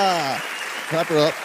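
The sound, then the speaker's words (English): Audience applause for a guest, a steady wash of clapping lasting about a second and a half, with voices cheering or calling out over it in short bursts. “Clap her up.”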